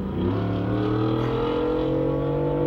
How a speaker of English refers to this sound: Hear that truck back there? That was a truck. Wow. That dude's got a turbo in that thing.